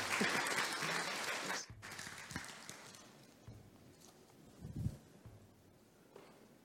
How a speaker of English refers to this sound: would you please join me in welcoming Calvin Anthony, please? You can clap.